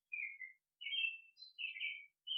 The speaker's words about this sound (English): That bird is making more sense than most of our conversation because it's absolutely genuine.